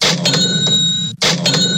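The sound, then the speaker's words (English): A cash register rings twice in quick succession, each time with a bright bell chime over a clattering drawer, loud, separated by a brief silence. “Double cash register means that it is time for Florida Cash Homebuyers cashing in.”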